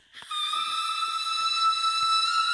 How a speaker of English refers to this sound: And let's just play the opening. Like, of course my bitch opened with a fucking whistle. Like, can we even?